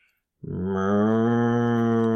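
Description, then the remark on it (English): After a brief pause, a person voices one long, low, steady moo, doing an impression of a cow that holds to the end, as the noise to guess in a game of Guess the Animal. “And it's a cow.”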